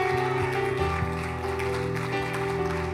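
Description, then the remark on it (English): An audience at a church service claps in praise of the Lord in a steady, dense wash of applause, with sustained keyboard or organ chords holding underneath throughout. “Come on, give the Lord a hand clap of praise tonight.”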